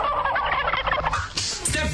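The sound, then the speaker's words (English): A turkey-slapping machine from 2008 makes a turkey gobble loudly in a rapid, warbling, rattling burst that fills the two seconds, with higher squawky notes near the end and no talking. “wonderful, magical, amazing turkey-slapping machine”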